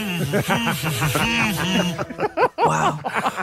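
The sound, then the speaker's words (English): A single voice hums a wavering, melodic tune, holding and bending notes fairly loudly, then breaks off briefly with a breathy pause before humming a few more rising notes. “Ever had a Grammy for humming?”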